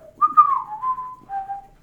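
A person whistles a short, wandering tune, a few sliding and held notes over about two seconds, close and clear with no talking.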